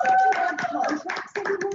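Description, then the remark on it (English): A short burst of applause, steady, dense clapping from a small group, with voices whooping and cheering over it. It dips briefly near the end, then picks back up. “Applause, everybody. Applause.”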